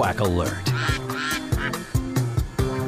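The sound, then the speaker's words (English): A 'quack alert' sound-effect jingle: repeated duck quacks sound in a quick, steady rhythm over upbeat, groovy 1960s-style music, loud and playful. “We're going to have as soon as Chad pulls this up, we're going to have a quack alert.”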